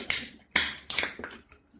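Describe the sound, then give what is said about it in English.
Glasses clink together in a toast: four quick, bright taps spaced evenly apart, each with a short, high ringing tail, heard on their own without any talking. “Oh. Cheers. Cheers.”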